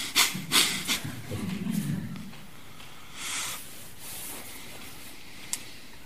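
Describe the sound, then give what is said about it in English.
Exaggerated, forced breathing: a few sharp sucking inhales and puffing exhales, a longer rushing breath, then a pause and another hard breath, with no talking. “And we find ourselves kind of sucking and blowing rather than just letting breathing happen.”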